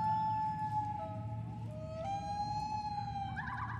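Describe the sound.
A person imitates a bird call with a sustained, reedy tone that holds steady, dips, then steps back up in pitch, fairly loud over a low rumbling background.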